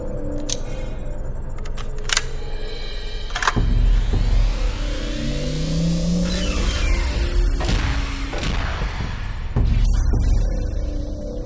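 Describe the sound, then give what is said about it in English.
A spaceship, the Lion's Pride, powers up: sharp mechanical clicks and clunks give way to a loud, rising whine that climbs steadily in pitch over a heavy low rumble, with further thuds near the end. “Why is the Lion's Pride powering up?”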